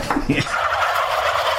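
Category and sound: bird, turkey gobbling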